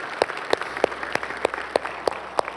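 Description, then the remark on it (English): An audience gives God a round of applause, a dense wash of many hands clapping with a few louder, sharper claps standing out at a fairly steady rhythm throughout. “Come on, let's give God a round of applause today, can we?”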